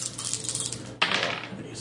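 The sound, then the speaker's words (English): Dice are rolled, clattering and tumbling across a hard tabletop, a soft rattle swelling into a sharper burst of bouncing clicks before settling, moderately loud. “So roll for it.”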